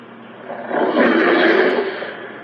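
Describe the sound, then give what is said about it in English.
A giant grizzly bear in a cave lets out a deep, sustained roar that swells over about two seconds, loud, then eases off slightly at the end, with no talking. “You've bumped into a giant grizzly bear.”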